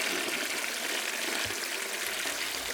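A toilet flushing, a steady loud rush of water that keeps up without pause for a few seconds, with no voices over it.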